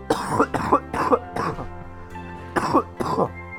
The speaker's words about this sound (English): Sorry about that cough.